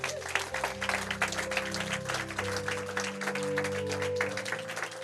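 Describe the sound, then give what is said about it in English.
A church audience claps for God after a prayer, steadily and densely throughout, a loud sustained wash of many hands, with sustained organ or keyboard chords humming underneath. “Come on, let's give God a big clap.”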